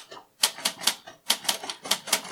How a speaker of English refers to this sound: Oi, the typing. Always with the typing.